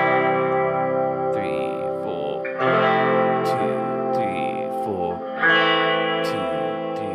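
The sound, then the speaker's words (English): Electric guitar rings out sustained, chime-like whole-note chords, each new chord struck about every couple of seconds and left to shimmer with effects and reverb, fairly loud, no talking. “So I do a chimey guy, and then I think I did a diamond guy. Now, diamonds are just whole notes.”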